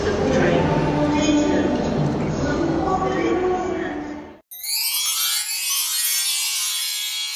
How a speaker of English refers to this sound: While we're here, I suppose that journey was too bad. It can get pretty crowded on the train, but I think we made the right made the right plan getting on at Waterloo rather than Woking.